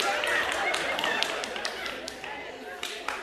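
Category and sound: crowd, audience clapping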